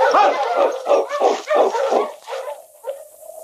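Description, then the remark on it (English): King, Sergeant Preston's dog, gives a rapid series of sharp, excited barks and yips, then trails off into high, thin whimpering whines at the end. “Some dog you got, Sergeant, believe me.”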